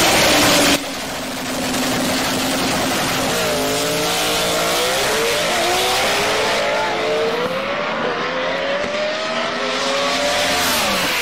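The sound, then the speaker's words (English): A loud Coyote V8 drag car engine, a Gen 1 motor built by TKM in a 680 stick-shift car, roars and revs hard, climbing in pitch through several quick gear changes, with a steady rumble throughout and no voices. “And he did such a great job vetting the combo that it was in a 680 car stick shift with a Gen 1 motor built by TKM.”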